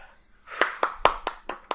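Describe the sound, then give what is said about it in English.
A short burst of hand claps, about six sharp claps in a quick, even rhythm, moderately loud over faint background noise. “I would have slow clapped, but I didn't know how the audio was going to work there.”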